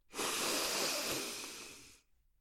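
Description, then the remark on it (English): A single long, deep inhalation, fairly loud, taken on the instruction to breathe in, with an airy hiss that holds steady for about two seconds and then stops abruptly. No talking. “And breathe in.”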